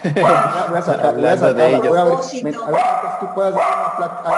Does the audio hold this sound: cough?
no